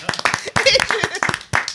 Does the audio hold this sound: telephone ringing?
no